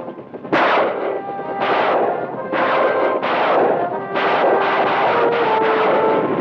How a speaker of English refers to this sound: Helicopters bombarding the enemy with rockets.